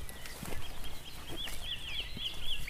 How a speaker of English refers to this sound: First wren, wasn't it? It was a wren, wasn't it?